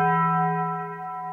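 A single strike of the bell rung on Doug's Dime rings out with a clear, sustained metallic tone and harmonic overtones, decaying slowly; loud, with no voices.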